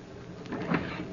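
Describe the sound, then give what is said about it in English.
The door of a ship captain's cabin being opened at sea as a storm brews: a short, soft scrape building to a muffled clunk midway through, then fading into low, steady background noise. No one speaks. “I opened the door.”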